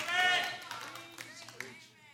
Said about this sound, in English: I clap for myself. I brought my own amens.